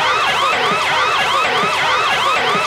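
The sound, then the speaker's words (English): A loud red alert emergency siren wails in rapid, repeating up-and-down sweeps, a fast cycling tone that keeps rising and falling about twice a second with no talking over it. “Lightning fans, if you are listening, please cover your ears for the next 30 seconds or so because the following is a red alert.”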